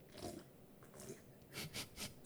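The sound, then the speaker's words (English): Someone slurps a very green tea in a few short, airy, hissing pulls, quiet at first and then a rhythmic run of three or four slurps ending in a sharper sound. No one speaks. “Drinks tea. Slurp.”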